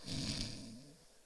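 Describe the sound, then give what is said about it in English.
A person imitates the single loud, rasping snore of a man knocked out by a hit, a throaty rattling inhale lasting about a second before trailing off. “I remember in the neighborhood, I seen someone get hit so hard he snored.”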